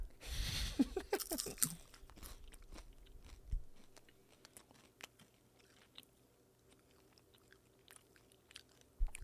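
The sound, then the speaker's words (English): Crispy crab being bitten and chewed: a loud initial crunch followed by a long stretch of softer, irregular crackling chews with occasional sharper snaps, no talking. “Crispy crab.”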